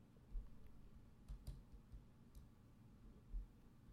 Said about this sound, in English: Oh yeah, you hear that keyboard? Yeah. It's compiling. It's changing the world. He's got cherry switches.